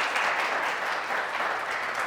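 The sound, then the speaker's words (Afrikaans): An audience claps together for a couple who got engaged on Friday evening, a steady, dense patter of many hands, sustained and fairly loud throughout, with no voices speaking over it. “Kan ons wel een hande klap gee asjeblief?”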